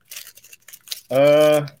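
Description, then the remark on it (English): Crinkling and rustling of the foil wrapper on a burrito being handled, in quick irregular bursts, then a short sustained voiced hum from someone. “So you're supposed to rip off the foil and not just have it all fall apart on you.”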